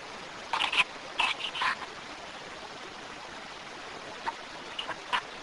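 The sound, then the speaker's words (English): A steady, hissing rush of a flowing water stream fills the background, broken by a few short, sharp clicks from a recorder in quick clusters near the start and scattered again toward the end. “So I just heard a water stream, or what sounded like a water stream, and a clicking sound, like a photograph was being taken in the background.”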